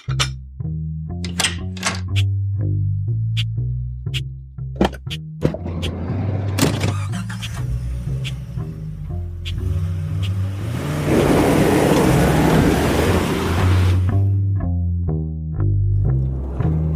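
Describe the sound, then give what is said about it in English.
A car door thunks shut, then the engine starts and revs as the car pulls away with a loud, sustained roar, all over steady background music. “Better get in the car.”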